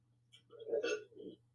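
A sharp hiccup with a breathy vocal catch, followed by a softer second one, over a faint, steady low hum.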